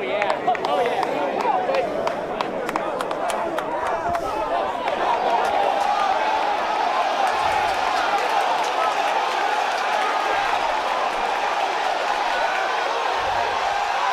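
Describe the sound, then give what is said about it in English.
A large outdoor golf gallery breaks into loud, sustained applause and cheering after Tiger Woods' shot on the 16th hole, dense clapping blending into a continuous roar with scattered shouts that carries on without letting up. “And we obviously cut the crowd noise a little bit because it was a very long swelling and growing swell of applause.”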